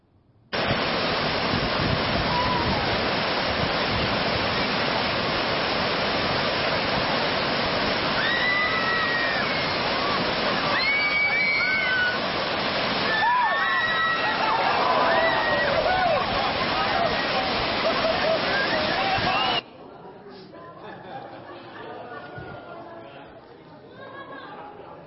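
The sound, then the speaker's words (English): Whitewater rapids roar loudly and steadily for about twenty seconds during a rafting trip while people shout and call out over the rushing water, then the roar cuts off abruptly to a quieter background. “I'm going to show you a short video of a rafting trip.”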